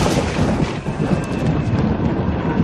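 A thunderstorm sound effect: a dense, steady wash of rain with a deep, rumbling roll of thunder underneath, loud and continuous throughout with no voices.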